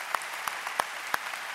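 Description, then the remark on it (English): Audience applause honoring veterans during a Veterans Day weekend service, a steady hiss of many hands clapping, with a few sharper, louder claps popping out at an even rhythm. The whole burst is fairly soft, with no voices. “Let's give them a round of applause in this room all over this community.”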